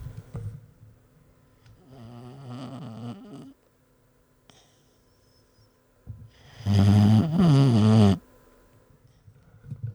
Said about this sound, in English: Daisy has quite a boxer snore going on right now. Let me see if I can get this.